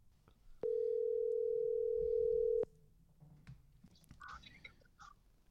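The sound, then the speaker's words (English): A loud, steady telephone tone sounds once for about two seconds as a call is placed to Jason Campbell, former Auburn Tigers and Washington Redskins quarterback, then cuts off sharply, leaving faint rustling and low background noise on the line. “So without further ado, let's give him a ring-a-ding-ding.”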